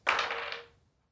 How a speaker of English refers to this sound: She saves. I still got to roll dice.